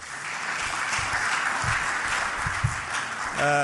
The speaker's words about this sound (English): So I think that's worth a round of applause, don't you?